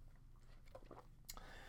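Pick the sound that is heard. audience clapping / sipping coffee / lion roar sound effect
sipping coffee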